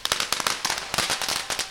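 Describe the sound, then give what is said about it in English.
A dense, rapid barrage of firecrackers bursting amid beating gongs, sharp loud bangs overlapping in an irregular crackling rhythm with no pause, over a noisy festive background, during the Shoronagashi procession among crowds of families, businesses and friends. “The sound from the gongs and the firecrackers was so loud,”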